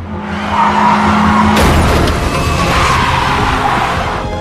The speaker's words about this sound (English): she crashes.